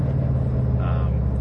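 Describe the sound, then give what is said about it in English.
The slightly loud exhaust of a turbocharged all-wheel-drive WRX car drones steadily while driving, a continuous low rumble with no clear change in revs over the short stretch. “Other than, like, the slightly louder exhaust, it's a really good car.”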